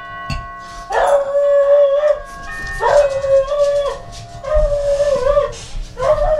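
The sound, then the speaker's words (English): A dog, Henry, barks at the doorbell: four long, drawn-out, howling barks at a steady mid pitch, separated by short pauses, while a faint sustained chime-like tone rings underneath. No one speaks. “And Henry lets himself be known as well as the doorbell.”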